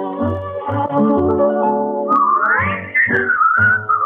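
A band plays a bouncy intro, then a clear, loud whistled melody takes over, gliding up and holding bright sustained notes over the steady accompaniment.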